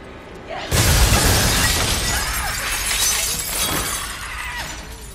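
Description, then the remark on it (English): A sudden loud crash of shattering glass in a film scene where the Billy doll smashes in through where it is in the cage, followed by several seconds of tinkling, scattering shards and debris settling, sharp with no voices. “But it's Billy, the doll, making another crash entrance where he smashes in through where he's in the cage.”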